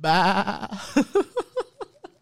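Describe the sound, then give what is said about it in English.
A person imitates a sheep, starting with a long wavering bleat and trailing off into a run of short, fading bleating pulses, fairly loud. “She's a sheep. Bab. Bab. Mo. Farm animals, bro.”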